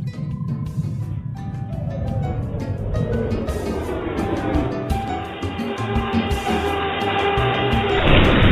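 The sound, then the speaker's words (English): An engine falls out of a vehicle, clattering and rumbling loudly as heavy metal parts crash and rattle loose, the din churning continuously before a high whine rises at the end. “The engine's fallen out.”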